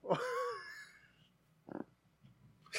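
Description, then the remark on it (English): A person voices an exaggerated, drawn-out fake yawn, a groaning, wavering tone lasting about a second, followed by a short breathy puff and a faint rustle. “Give me your most realistic attempt at a yawn.”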